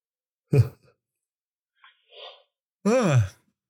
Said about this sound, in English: As he yawns. Yeah. I'm tired today.